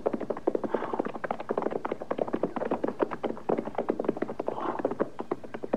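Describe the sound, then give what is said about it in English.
Horses' hooves clip-clop steadily at a brisk walking pace, the sharp overlapping hoofbeats suggesting more than one horse moving along, with no voices over them. “We'll leave the horses here.”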